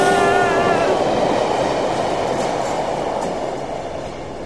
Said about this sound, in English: I checked the app. The train is early. Get off of the tracks.